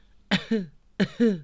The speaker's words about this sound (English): I took a bite of the biscuit. And that was my first mistake. Had I learnt nothing from Snow White? I started to cough.